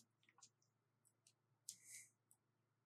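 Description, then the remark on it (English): Four dice clatter and rattle across a surface: a scatter of sharp, bright clicks, then a louder burst of tumbling rattles before a final click as they settle. No one speaks. “So we're going to roll 4 dice.”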